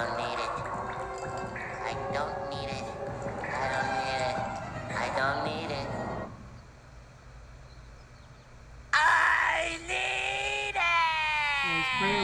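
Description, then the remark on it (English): A cartoon character from SpongeBob yells and wails in strained, wavering bursts, falls quiet for a moment, then lets out a sudden, loud, high-pitched scream that carries on to the end. “He started screaming.”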